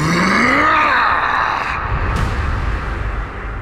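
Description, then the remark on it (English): Thanatos unleashes a loud, harsh monstrous scream that swells upward in pitch, then sags and fades after about two seconds into a low, grinding rumble. “Thanatos unleashed a horrific scream.”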